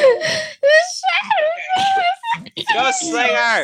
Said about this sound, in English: She's screaming into the microphone. I'm sorry. Because she moved. She's like right on top of it.